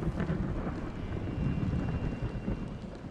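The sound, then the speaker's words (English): Stormy wind howls in bad weather, roaring steadily and loudly throughout, a dense, rumbling rush of air with no pauses and no voices. “The wind is howling and the weather is bad.”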